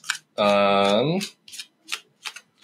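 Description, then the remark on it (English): Playing cards are shuffled in several short, crisp papery bursts spaced about every half second, while one card is out-jogged to mark a spot in the deck, after a voice holds a long drawn-out tone. “And then I keep on shuffling like this.”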